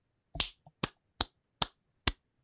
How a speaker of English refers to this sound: And as we do at the end of every bracket, we're going to clap it out.